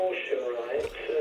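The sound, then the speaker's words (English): A voice plays faintly from a phone-in caller's radio in the background, sounding thin and boxy with a slight echo, steady throughout with no clear words. “you need to turn off your radio because we can hear an echo in the background.”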